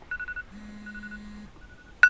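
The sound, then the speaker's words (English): An iPhone alarm goes off before dawn in Japan, waking a sleeper on a futon: thin electronic beeps and a sustained low tone, then a sudden louder burst of bright chiming at the end. No one speaks. “My iPhone alarm shocks me awake.”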